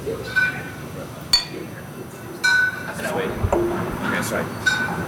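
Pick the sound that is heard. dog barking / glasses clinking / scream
glasses clinking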